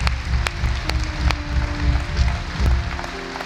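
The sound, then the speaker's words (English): An audience applauds the mothers standing in the room, steadily for several seconds, a dense wash of clapping with a few sharper claps standing out and a low, rhythmic pulse running underneath. “We applaud you.”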